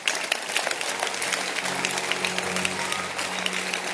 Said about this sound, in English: Can you clap your hands?